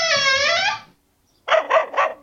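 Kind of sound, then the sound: animal, puppy barking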